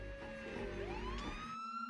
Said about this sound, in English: I love the way the siren sort of is going up, but the volume's going down.